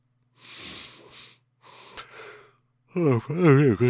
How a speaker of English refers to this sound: Pardon me, yawning.